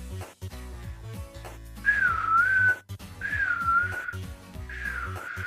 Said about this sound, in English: Oh yeah, it was very creepy whistling very at the very end there.